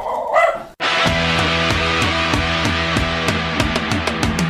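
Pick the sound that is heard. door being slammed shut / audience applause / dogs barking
dogs barking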